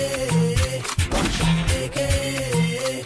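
Loud gunshot sound effects crack out in short bursts over a thumping music beat with a deep bassline, one dense cluster of shots near the middle.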